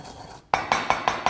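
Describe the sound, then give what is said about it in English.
Spices being bashed and ground to a coarse grind with a pestle in a mortar: after a brief hush, five quick, evenly spaced knocks ring out with a hard, clinking ceramic tone. No one speaks. “You know, you can kind of have a coarse grind like that.”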